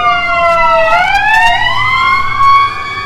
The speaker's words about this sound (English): We're sitting outside, and I'm like, when we started, I wonder if there's going to be a siren go by. I shouldn't have thought it into existence.